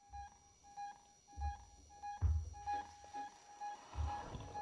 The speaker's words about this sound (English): Here goes, beeping section.